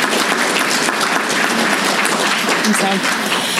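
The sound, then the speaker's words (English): A convention crowd claps steadily in dense, sustained applause for a new lifetime member, a loud wash of many hands that stays even throughout, with faint voices mixed in beneath. “So I would like everybody to give a round of applause to Norwestcon's newest lifetime member”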